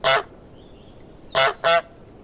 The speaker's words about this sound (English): And then eventually we ended up on these little takes that I took from a library of a goose recording and just made it really short and really neutral. And that's what we ended up with in the game.